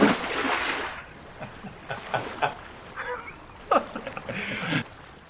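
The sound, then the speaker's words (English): A loud splash as a person jumps into water, followed by several seconds of muffled bubbling and gurgling bursts, like sounds heard just below the surface. “And he jumps in.”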